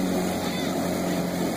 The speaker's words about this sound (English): Here's some crazy drunk people on a boat. Are they towing a second boat? Yeah.